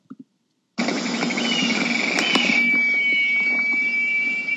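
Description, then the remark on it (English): A cicada sings in a loud, steady, high-pitched buzzing drone that starts abruptly after a brief pause and holds without break to the end, with a whining tone running through it. “a cicada singing.”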